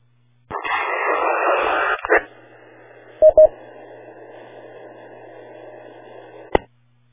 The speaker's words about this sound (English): Okay, I heard a station trying to reach the repeater, but just heard static.